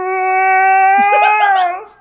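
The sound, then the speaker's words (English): A person imitates a wail with one steady, sustained vocal tone lasting about two seconds, pitched fairly low for a wail, while other voices briefly break in underneath before it trails off. “I let out a kind of high-pitched wail. Do you mind showcasing that?”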